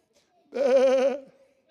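A single drawn-out sheep bleat, loud, with a shaky, wavering tremble lasting under a second, then silence.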